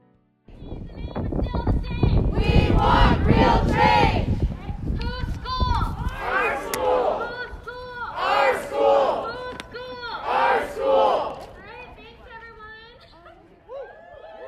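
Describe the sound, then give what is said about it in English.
A crowd of graduate student protesters chants and shouts in unison outside, in front of Robertson Hall at Princeton, voicing demands to the School of Public and International Affairs. Loud and energetic, with rhythmic call-and-response bursts fading into scattered voices toward the end. “graduate students from Change Princeton Now gathered in front of Robertson Hall to voice their demands”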